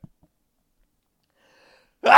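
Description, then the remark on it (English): A single loud sneeze bursts out into the mic after nearly two seconds of quiet, with a faint intake of breath before it. “That's a podcast sneeze.”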